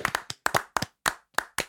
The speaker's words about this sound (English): Salutes, claps. Yeah, let's applaud. Should we applaud for the fire service?